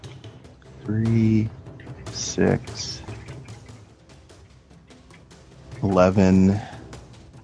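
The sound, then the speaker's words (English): Soft, rapid clicking of a computer keyboard being typed on continues steadily throughout, with a couple of brief vocal sounds rising over it. “Someone's typing.”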